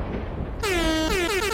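A loud, blaring air horn blasts in a few quick bursts, the first long and the rest shorter, with strong harmonic tones filling the space after a brief low rumble.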